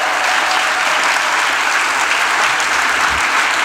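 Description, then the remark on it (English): The North River church audience applauds its adult team steadily, a dense, loud wash of many hands clapping that holds at an even level throughout, with no voices standing out above it. “Let's hear it for the adults in the church.”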